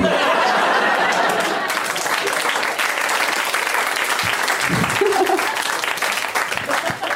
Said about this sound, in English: Well, you are wonderful. Round of applause for that woman. She is wonderful.